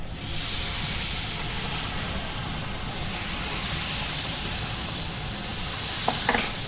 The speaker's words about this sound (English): In front of him is a vat of hot oil. Before frying, he checks to see if the liquid is hot enough by sprinkling a few drops of batter into the oil and listens.